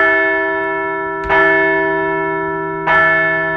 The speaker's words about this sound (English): So let's ring the bell for a fine weekend in Philly.